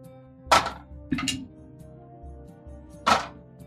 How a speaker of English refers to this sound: I got a 18. Wow. Well, how many dice are you rolling? For dexterity, it's 2 plus 2.